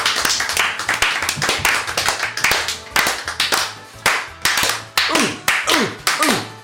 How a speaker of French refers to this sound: On peut faire des applaudissements de vieux et je fais Philippe Bouvard.